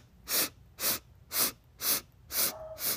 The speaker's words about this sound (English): It's going to be 8 rapid breaths in through your nose, 8 rapid breaths out through your nose.